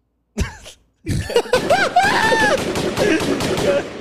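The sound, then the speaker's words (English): Gunshot sound effects played from a soundboard by tapping two buttons: two sharp blasts followed by a dense rapid volley of gunshot effects, loud and continuous, with voices shouting and yelling over the barrage. “Yo, guys, before you hear like all those gunshots, I just see his toe delicately just tapping on two buttons.”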